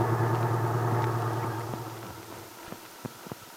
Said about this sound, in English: Just then, Randy pulled into a parking space on Main Street. He jumped out and opened the door of the little truck,